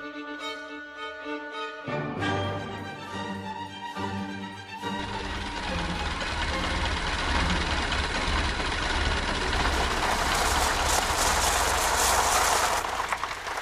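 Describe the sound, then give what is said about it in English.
An old car engine idles, loud and rough, starting with uneven chugging before settling into a steady, rattling rumble that grows fuller and noisier toward the end. “Will you need me to get out and push to get it started?”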